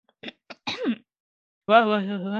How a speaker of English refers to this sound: Hyena cleared his throat.